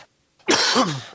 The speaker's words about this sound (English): was that a Rona cough?